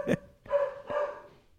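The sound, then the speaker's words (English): A beagle mix dog named Petunia, a 'meagle' (a miniature pinscher mix), barks: one short, sharp yip followed by two longer, drawn-out baying barks in quick succession, with no one talking. “She is a meagle, which is a real thing.”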